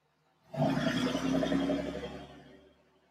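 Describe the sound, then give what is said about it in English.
A loud car roars past, its engine bursting in suddenly with a deep, growling rumble that holds for a couple of seconds before trailing off. No one speaks. “Wait till this piece of shit passes here first.”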